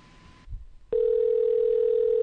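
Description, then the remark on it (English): A telephone dial tone while placing a call to a friend: a loud, steady, low-pitched hum that starts abruptly after a brief soft rustle and thump and drones on unbroken, with no voices. “We're calling your friend, Christopher Walken.”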